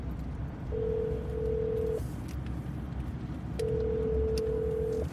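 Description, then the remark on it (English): A phone call to a home phone going through: two long, steady electronic tones, each about a second or more, separated by a pause, over a constant low hum with no one talking. “Call home.”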